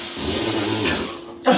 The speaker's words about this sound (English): Jesus Christ. I thought you were snoring then.